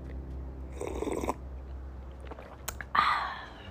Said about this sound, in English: let me sip my tea